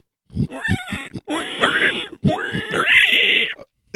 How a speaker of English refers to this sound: It's that sound. His dog hates that sound. As he does not like the sound of the pigman.